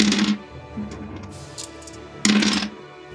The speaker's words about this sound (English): It's going to be a lot of dice.